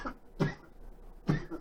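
A man coughs in short, harsh bursts, two distinct hacking coughs about a second apart with a faint one at the start, moderately loud against a quiet background.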